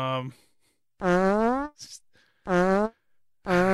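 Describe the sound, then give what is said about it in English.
Three loud, buzzy, drawn-out fart-like blasts with a short breathy noise between them, likely made by a voice imitating the sound rather than a real fart. “After farting.”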